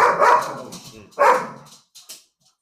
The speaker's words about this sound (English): There's a motherfucking dog in here. I don't know why. Oh my god, that's actually the cutest one. Oh, it's cute ass dog. I love dogs.